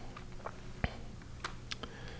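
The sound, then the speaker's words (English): Sparse, irregular clacks of a mechanical keyboard with PBT keycaps, about six keystrokes, with one heavier, deeper thock from the space bar, whose keycap is a thinner PBT than the other keys, standing out among the lighter clicks. No one speaks. “My space bar sounds a little off.”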